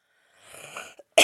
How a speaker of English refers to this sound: And sometimes you'll hear me cough. Sometimes I'll get to the button in time, and you won't hear me cough, but you'll hear the recording click off and then click back on.